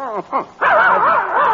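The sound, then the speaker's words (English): A puppy named Tiger, carried in a mail pouch, gives two or three quick, high yips, then breaks into a long, wavering whine, loud, with no one talking over it. “It's our dog.”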